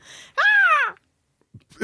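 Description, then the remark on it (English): Don Johnson, voicing a falcon character, lets out one loud, drawn-out caw, a nasal croak that rises and falls over about half a second, followed by silence and a couple of faint, brief noises. “They dropped $1 million in Don Johnson's lap so he could make caw noises.”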